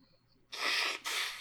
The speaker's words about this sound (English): Excuse me. I'm blowing my nose. I've been this sick is the past few days.